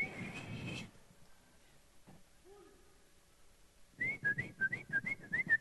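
A person whistles a short, bouncy tune of quick rising and falling notes, fairly loud over a rustling backdrop, after a brief held whistle tone and a quiet pause.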